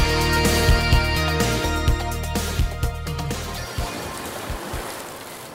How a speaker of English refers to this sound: Oh my god. You guys hear that? Wow. It's the sound of seagulls. It's the sound of peace. Oh my god, it's waves so rolling in.